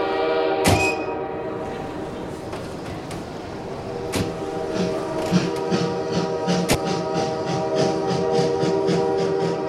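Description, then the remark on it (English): A train travelling to Leningrad rolls along with a steady mechanical rumble and clacking, while a loud, sustained horn sounds over it, with sharp metallic clanks punctuating the motion. “The student arrives in the Leningrad train station.”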